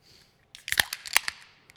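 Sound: beer can cracking open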